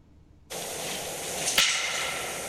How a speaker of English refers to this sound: It sounds just like a pair of clapping sticks coming together. The wooden clapping sticks. So this is what they sound like, if we can get this right.